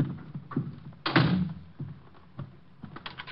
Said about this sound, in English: I'm locking the door. I don't want anyone coming in.